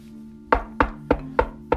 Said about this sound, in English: It's about 6 o'clock in the morning when Lou and Cato hear a knock at the front door.